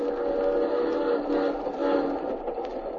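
A train rolls steadily along the rails, its continuous rumble and metallic hum filling the space at a constant, fairly loud level with no voices present.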